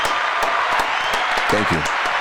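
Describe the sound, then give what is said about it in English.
A burst of applause from a small group, dense overlapping claps filling the space at steady loudness, with a brief bit of voice cutting in near the end. “Round of applause for me.”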